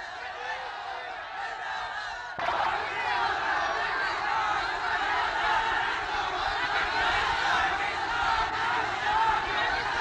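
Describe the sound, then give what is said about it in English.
A large crowd of Bengalis in Dhaka, Bangladesh, roars and shouts "Pakistan Zindabad" in unison during Zulfiqar Ali Bhutto's 1974 visit. It is a dense, sustained wall of many voices that grows louder after a couple of seconds and keeps surging without pause. “Well, here are Bengalis after the creation of Bangladesh shouting Pakistan Zindabad when Zulfiqar Ali Bhutto visited Dhaka in 1974.”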